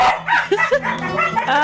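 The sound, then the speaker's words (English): Two small dogs, puppies named Princeton and Athena, bark and yip in quick, overlapping bursts at a puppy party in a radio studio, fairly loud, with whiny high-pitched yelps mixed in over a short, busy stretch. “We're having a puppy party in the studio right now. Princeton and Athena are both here.”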